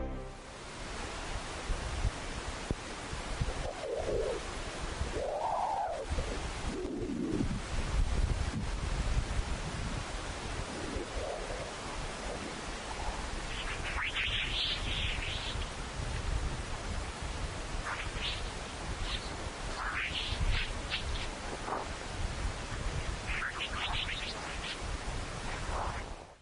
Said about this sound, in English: These peculiar chirping sounds come from dispersive waves, which quickly shift from one frequency to another as they move through the solar wind. These shifts create a sort of chirp that sounds like wind rushing over a microphone.